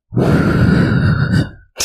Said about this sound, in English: I'm breathing. That wasn't breathing. Inhale. Exhale. That was the shakiest breath I've ever heard.